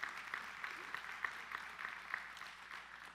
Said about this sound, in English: Friends, yes, it's a good time to clap.